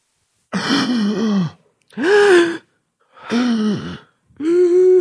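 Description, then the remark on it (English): A person gasps four times in a row, each sharp voiced intake lasting about a second with short pauses between, fairly loud with no talking. “I can't gasp more than once in a row.”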